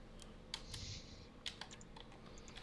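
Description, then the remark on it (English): Dice are rolled and clatter across a hard surface in a short burst of sharp little clicks and taps, quiet, with no one speaking, as a player rolls for a character's appearance. “Well, that roll of the dice added 24 pounds to my waistline, so.”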